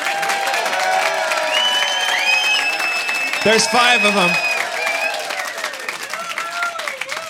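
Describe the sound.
A crowd applauds and cheers steadily throughout, with whoops and shouts rising above dense clapping, while a voice speaks briefly in the middle of the noise.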